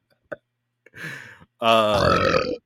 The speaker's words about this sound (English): Did you just gloss over the fact that I finally got a decent burp on mic?